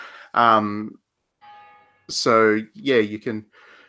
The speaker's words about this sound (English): The bells are tolling for you, man. Yeah, I heard the Dark Souls bells in the background there.